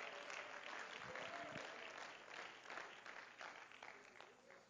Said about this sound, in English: Oh, clap your hands and let's give praise to Him again.